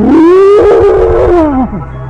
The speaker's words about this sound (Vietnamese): Tôi nhảy chồm đến tên gần nhất, vồ hù nó với tiếng rú kinh rợn ma quái.